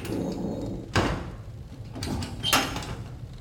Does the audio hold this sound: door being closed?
yes